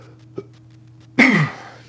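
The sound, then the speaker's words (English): A single short, stifled throat sound, like a held-back cough or burp, bursts out after a faint click, then trails off over a low steady hum. “Trying to see if it was either a cough or a burp, but either way, thank you for listening and watching the”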